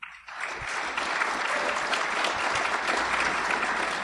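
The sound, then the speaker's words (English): An audience bursts into steady applause to vote in a poll on which item is the fiction, a dense wash of many hands clapping that swells quickly and holds at an even, fairly loud level throughout, with no voices. “All right, if you think the item about landfill is the fiction, applaud.”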